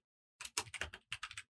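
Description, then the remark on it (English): Quick bursts of keyboard typing as someone types a message, several clustered clicky keystrokes in two short runs with a brief pause between, moderately loud, no voices. “I'm typing a message.”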